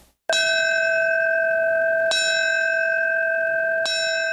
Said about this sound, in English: The ringing of the New York City Fire Department bell, the traditional signal for a fallen firefighter.